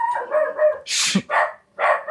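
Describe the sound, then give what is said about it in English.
A dog that wants to squirrel hunt barks, starting with a drawn-out whiny yowl, then a sharp burst and two more short, strained barks in quick succession. No one speaks. “Well, the dog wants to squirrel hunt.”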